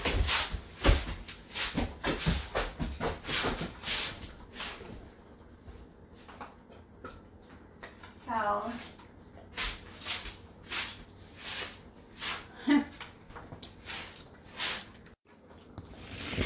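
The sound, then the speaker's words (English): Food being put out for the dogs: a busy run of clattering knocks and thumps, cupboard doors and bowls handled, footsteps moving around, and a brief whining sound partway through. No one speaks. “I'm just going to give the dogs their food real fast.”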